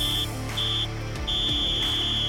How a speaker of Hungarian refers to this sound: A hármas sípszó jelzi a meccs, és egyben a műsor végét.